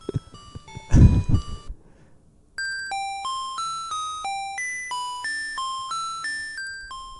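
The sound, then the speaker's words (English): A video game over jingle of bright, chiming bell tones: a short opening flourish with a brief noisy burst, a pause, then a steady melody of about a dozen ringing notes, each fading quickly. “Well, we heard like the ending, and this is, I guess, just the game over. And so it's like just the bell sound minus the actual music.”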